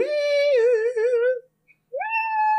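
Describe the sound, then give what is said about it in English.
A voice imitates a theremin as a segment intro, with a long wavering, warbling tone that slides and quivers, breaks off into brief silence, then returns with a rising swoop. Loud, no words. “Oh, that's a theremin sound?”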